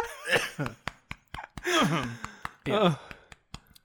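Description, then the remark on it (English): Someone coughs and splutters after water went down their windpipe: sharp, sudden bursts mixed with three longer strained, wheezing gasps for breath, fairly loud and with no speech. “Well, a little bit went down my windpipe instead of my food pipe.”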